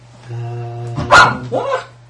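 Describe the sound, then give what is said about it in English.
A dog guarding his bone gives a low, steady growl, then breaks into two loud, sharp barks in quick succession before falling quiet. “He's very defensive of his bone if you go anywhere near it.”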